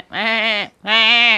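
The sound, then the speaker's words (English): A voice imitates a goat with two loud, wavering bleats in quick succession, each about half a second long with a brief pause between, clear with nothing else around them. “So what had happened was a goat had got out and had got into a construction site of a three-story villa.”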